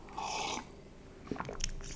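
A sip of Tropicana juice: a brief breathy slurp, then a pause and a few soft wet mouth clicks and swallowing sounds, with no talking.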